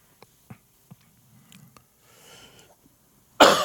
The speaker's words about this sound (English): Excuse me. Got the coughs tonight.